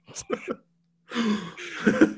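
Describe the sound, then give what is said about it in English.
A person audibly gasps with a few short, breathy vocal bursts, then a brief silence, then a longer, louder rush of air, with no talking. “He audibly gasped.”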